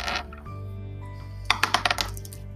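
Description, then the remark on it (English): A player rolls dice for an attack in a tabletop game: a quick cluster of small hard clicks and clatters as the dice tumble and bounce across a tabletop, about five sharp impacts in rapid succession over a low steady background hum. “Okay, roll your dice.”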